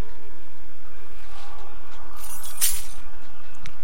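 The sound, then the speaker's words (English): A short burst of keys jangling and clinking, peaking briefly over a steady background hiss with a few lighter metallic ticks before and after. No one speaks. “Well, it may have smacked me in the nuts, but I have some keys.”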